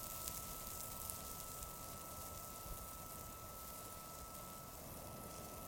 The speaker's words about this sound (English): But now, the power's back on, and I'm making hot dogs on the BioLite grill that came with my camp stove.